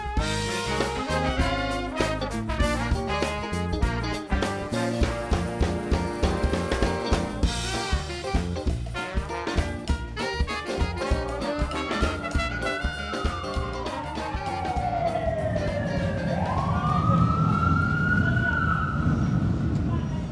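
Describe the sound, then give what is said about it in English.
Busy traffic on Canal Street in New Orleans, with two streetcar lines between six lanes, rumbles steadily, then a wailing siren rises and falls through the second half, loud, sweeping up and down over the constant din of vehicles. “Two streetcar lines running between six lanes of traffic, Canal Street is the largest thoroughfare in New Orleans, bustling with people traipsing in and out of hotels, restaurants, and souvenir shops.”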